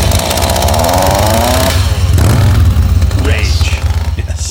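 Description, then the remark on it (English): A loud chainsaw revs hard, its engine pitch climbing and dipping in a raspy, buzzing roar that churns on for a few seconds without a break. “And that's when Bubba decided he's had enough and he pulled out the chain.”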